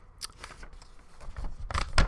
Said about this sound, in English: Hear that? Pieces of paper. See, I did this in Word. I could have just emailed it to my home computer and then just pulled it up on the screen, but I like to print things out. I like actual tactile paper and pencil and stuff like that.